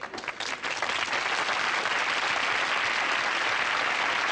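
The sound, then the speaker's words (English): A swell of canned sitcom applause, a clap track played for Conrad Bain's first entrance, the same clap track used on The Facts of Life and Different Strokes. It begins with a few scattered claps and quickly fills into a dense, steady wash of crowd clapping that holds loud and even throughout. “they put in the clap track.”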